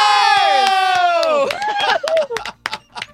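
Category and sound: crowd, crowd cheering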